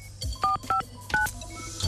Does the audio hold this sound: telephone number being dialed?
yes